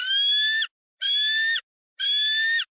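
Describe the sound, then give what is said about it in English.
A baby bald eagle gives three drawn-out, raspy screeching calls at an even pace, each about half a second long. The calls are loud, with brief silences between them. “It might be a baby, but it is a bald eagle.”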